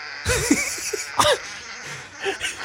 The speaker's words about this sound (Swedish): De hoster. De? Folk som hoster.